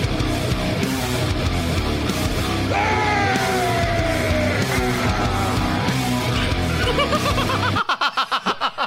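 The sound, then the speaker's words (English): A harsh, vicious scream tears through loud, dense, distorted music, sustained and strained, before the band cuts off abruptly into a short burst of pulsing, breathy vocalizing. “That was a vicious scream right there at the end.”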